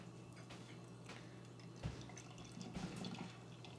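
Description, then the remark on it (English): Beer is poured into a glass, a soft, uneven trickle with small drips and splashes and one dull knock partway through, over a steady low hum, with no talking. “So let's go ahead and get this open, get it into a glass, and see what I think about it.”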